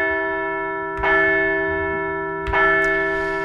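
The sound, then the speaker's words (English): A large bell tolls twice, about a second and a half apart, each strike ringing out loud and resonant with a long sustained hum between them, no voices present. “So we're going to ring the bell one more time for the finale of the Phils in 5 podcast.”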